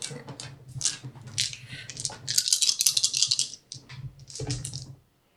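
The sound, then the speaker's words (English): Four dice are rolled for a lore roll in a tabletop game, rattling and clattering together in a burst of bright, rapid clicking that builds into a dense tumbling rush, then settles with a few final knocks before falling silent. “Four die. I must have four dice of lore.”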